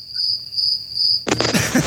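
Crickets chirp in a steady, high-pitched trill with no voices. Partway through, a loud burst of broad rushing noise suddenly cuts in over them.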